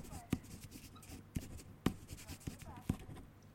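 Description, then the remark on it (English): A pen scratches across paper in a series of quick, uneven strokes with sharp taps between them, over a faint low background murmur. “I'm writing it.”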